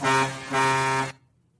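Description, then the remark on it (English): The horn of the monorail that goes through the Contemporary Resort sounds twice in quick succession, two loud, bright, harmonically rich blasts with a slight dip between them, ending abruptly into silence. No one speaks. “Which, of course, is the monorail that goes through the Contemporary Resort.”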